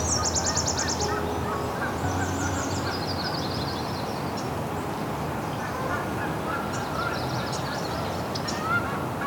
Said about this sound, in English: Here's some Canada geese.